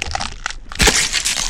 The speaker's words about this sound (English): In a flash, Satan grabs Nelly by the head. Before she could do anything, he crushed her skull between his hands.